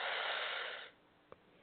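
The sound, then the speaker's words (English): A long, airy breath drawn in during a guided breathing exercise, lasting nearly a second, steady and fairly loud, then cut off into near silence broken by one faint click. “Let's do some breathing. Let's inhale.”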